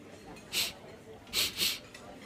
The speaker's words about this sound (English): Why do you do that? Do what? You keep sniffing. Not like you've got a cold or anything, but like you're, I don't know, trying to smell something, maybe.